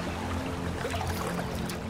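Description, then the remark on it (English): Running river water trickles and babbles steadily for the whole stretch, a continuous wash of sound over a low background rumble, with no voices; the river is about 150 yards from a family farmhouse in the townland of Ballin Island, about 6 miles from Swinford. “I just love this place, and the river's just down there, about 150 yards.”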